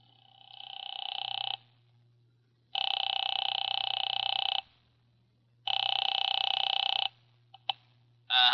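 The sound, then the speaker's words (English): A telephone rings on the line after Nero Wolfe dials a number from the library that serves as his office. Three long, buzzy ringing tones, each about a second and a half with short pauses between, play over a steady low hum and end with clicks. “He had just dialed a phone number and, with his eyes closed, was leaning back in his specially built chair”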